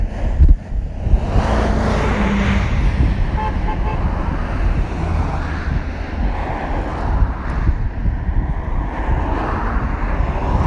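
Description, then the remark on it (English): A car horn on a road gives a couple of short toots over steady, rumbling traffic and gusty wind noise buffeting the microphone; it is beeped by a driver in a waste management vehicle. No one speaks. “Somebody just beeped to me.”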